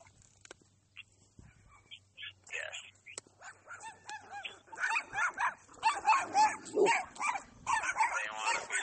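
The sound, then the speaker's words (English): Dogs bark in quick, overlapping bursts mixed with yips and whines, starting sparse and faint, then growing louder and nearly continuous toward the end, as if a few dogs are barking. “There's dogs. They're trying to get in the show too.”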